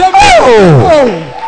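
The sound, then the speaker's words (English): A church audience claps and cheers loudly, with several voices whooping and shouting together in rising and falling tones, sustained for a second or so. “Oh, clap your two hands for the Lord.”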